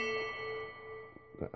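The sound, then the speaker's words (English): A phone notification chime, a Google prompt to verify a contact, rings out as a bright, sustained tone with layered harmonics, fading slowly, followed by a couple of short voice sounds near the end. “Thanks for that notification about nothing, phone.”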